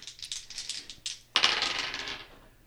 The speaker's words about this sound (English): So, roll stealth check, two dice. Tell me the colors of both of them.